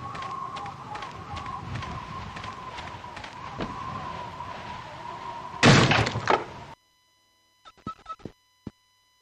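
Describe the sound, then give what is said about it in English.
A sticky door rattles and scrapes as it is worked back and forth, then shuts with one loud slam, followed by silence and a few faint clicks. “I fixed your door. It was sticky.”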